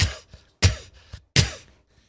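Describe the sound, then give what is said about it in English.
A person imitates a cat hacking up a hairball: three loud, harsh, raspy heaves evenly spaced, each bursting abruptly and trailing off, with brief quiet gaps between and no talking. “Yeah, I'm coughing up a hairball.”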